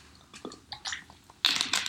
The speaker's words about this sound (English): And again, whatever you've poured for yourself, I don't know, whiskey, if you're drinking a beer, whatever your poison is, let's take a sip, shall we?